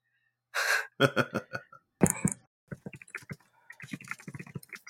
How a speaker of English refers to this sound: What is that noise? That was me scraping some like dried glue off of this desk.